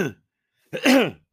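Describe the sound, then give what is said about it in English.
A fairly loud cough comes in two parts: a short clipped burst, a brief pause, then a longer, harsher hacking cough with a rough voiced edge. No one speaks. “as I cough up along, what's new?”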